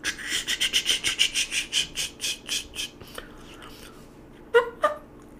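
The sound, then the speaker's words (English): A game call that is not ready yet and still a little dry is blown: a quick, steady run of about a dozen raspy, dry squawking notes that fades off, then two sharper, louder squawks after a short pause. “Call's not ready yet. Still a little dry.”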